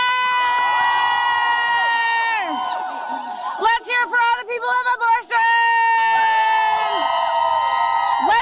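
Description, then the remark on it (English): Loud crowd cheering for abortion at a pro-abortion rally as Chuck Schumer leaves the stage, with sustained high-pitched yelling, then a burst of choppy rhythmic shouts like a chant, before the cheering swells and holds steady again. “They were literally cheering for abortion as soon as Chuck Schumer left the stage.”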